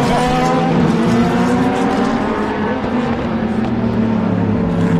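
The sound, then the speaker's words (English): Corvette race cars rumble loudly past with deep, throbbing engine tones that hold steady for several seconds, with no voices over them. “The Corvettes really rumble, don't they, Richard?”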